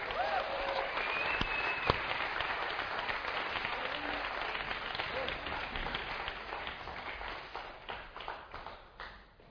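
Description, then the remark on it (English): A standing audience applauds Jesus with a clap of praise: dense, sustained clapping that holds steady for several seconds, then gradually thins and softens toward the end, with a few brief cries mixed in early on. “Stand up on your feet. Give Jesus a clap of praise tonight.”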